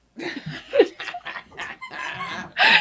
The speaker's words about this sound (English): All right, I already hear stuff on her side. What is all that noise? Really, dude? I don't know. It's my dog.